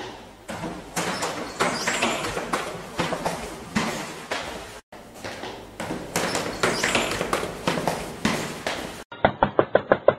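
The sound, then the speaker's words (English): Hollow, rapid knocks on an office door, about half a dozen in a quick rhythmic burst, follow several seconds of busy thumping footsteps of someone going up steps. “So if you just go through that door, up the steps, knock, you'll get ready to listen right in.”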